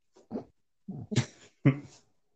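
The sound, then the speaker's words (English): A dog barks three times in quick succession, short sharp yelps with brief gaps between them, moderately loud, with no talking. “Literally, I hear him barking.”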